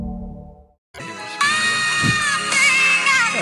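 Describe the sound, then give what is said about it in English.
After a brief muffled sound and a moment of silence, a large crowd erupts into loud, sustained high-pitched screaming and cheering that swells and holds to the end. “Gotta get the screams.”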